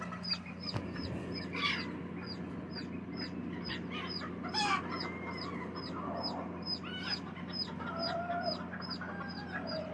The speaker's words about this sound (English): Bet you didn't know that hens can fight too. These hens are fighting and their babies are like scattered. Trying to kick each other's arse.